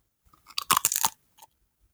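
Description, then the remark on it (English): A crisp crunch of a tortilla chip being bitten by a person eating a snack, a quick burst of brittle cracking lasting about half a second, followed by a faint softer crunch, with no talking. “That is a tortilla chip.”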